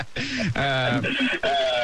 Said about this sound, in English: I can hear you. We can hear you a little bit of the echo for wherever you are.